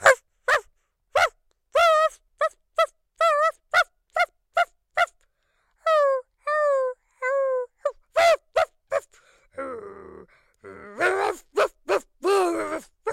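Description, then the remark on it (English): A voice imitates a dog performing a poem, delivering a long run of short barks and yelps in a halting, speech-like rhythm, with a few drawn-out howling whines near the end. “Was the same poem, but if it was performed by a dog.”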